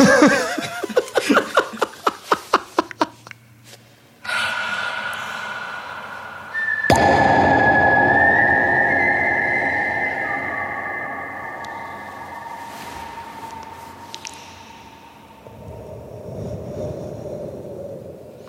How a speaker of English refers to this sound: About the Assembly of Silence moments is that it doesn't matter what pitch the whistle is, it always sounds cool. It does, doesn't it? For those of you who don't know, we create those sounds. Real time.